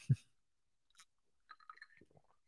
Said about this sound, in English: The Red River, let me take another drink of whiskey and try that again.